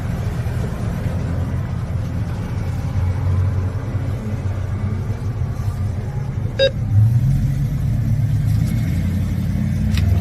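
Cars drive past outdoors, a steady low rumble of road traffic that swells slightly as vehicles go by, with a brief high chirp partway through. No one speaks.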